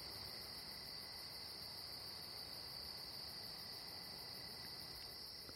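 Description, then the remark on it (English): A steady chorus of night insects, likely crickets, including the call known as the old snore whistle, trills continuously in high-pitched, shimmering bands with no pauses and no voices, holding an even, fairly soft level throughout. “You know, old snore whistle's still going pretty strong. I don't know, you should be able to still hear that.”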